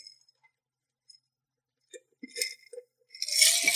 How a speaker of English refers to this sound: I'm going to drink the last couple sips of my what's left of my tiki drink.